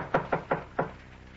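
Four firm knocks on a door in a quick, slightly uneven rhythm, clear, followed by a quiet pause with no voices.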